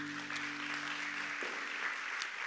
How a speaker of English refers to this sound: Come on, why don't you clap your hands for God's word.